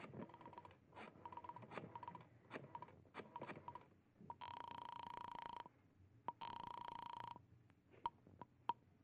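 A telephone receiver is lifted with a string of sharp clicks and clacks as a number is dialed, followed by two steady electronic telephone tones separated by a short pause, then a few more scattered clicks. No one speaks.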